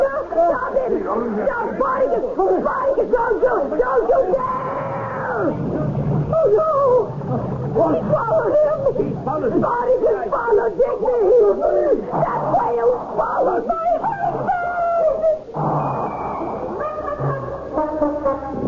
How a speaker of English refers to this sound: And with a mighty gulp, the huge whale swallows the unfortunate Digby.